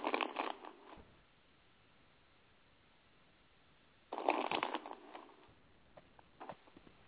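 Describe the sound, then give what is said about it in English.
Two bursts of a deck of cards being shuffled for a reading, a dense riffling rustle for about a second, a long quiet gap, then a longer shuffle with a few trailing flicks. “Almost done shuffling.”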